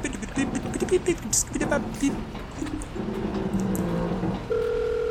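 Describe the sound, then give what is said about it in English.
A telephone being dialed on speed dial to call a bartender, with quick button tones among clattery handling noise, then a steady electronic ringing tone that holds clearly and fairly loud to the end. “It's ringing.”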